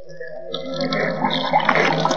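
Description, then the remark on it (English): Water pours steadily into a glass for a couple of seconds, a continuous splashing trickle that grows slightly fuller as the glass fills. No one speaks. “I must have a glass of water.”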